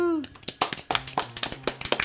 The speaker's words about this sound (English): Polite applause. It's like golf. It's like golf.